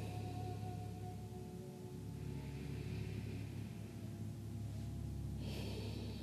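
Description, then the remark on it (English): Quiet, slow natural breathing during a guided breathing exercise, a gentle inhale and exhale rising and fading over a steady low background hum. No one speaks. “Keep breathing, just your natural flow of breath.”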